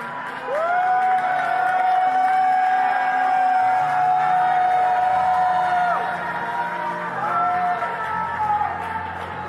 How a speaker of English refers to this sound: Come on, church. Be the great cloud of witnesses. You're cheering for the person next to you. You're cheering for the people that have gone into North Tulsa. You're cheering for the missionaries that have gone overseas.